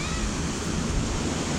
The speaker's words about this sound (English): I'm in Mexico, and hopefully you can hear the waves.